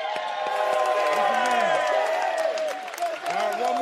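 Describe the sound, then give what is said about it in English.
A large crowd bursts into sustained applause and cheering, with dense clapping and overlapping shouts and whoops, loud for several seconds. “Let's all clap it up for that, too.”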